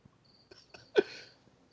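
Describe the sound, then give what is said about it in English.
A cricket chirps with a thin, steady high-pitched trill in the background, faint and continuous, while a few short knocks cut in, one noticeably louder burst near the middle. “This cricket's driving me up the wall.”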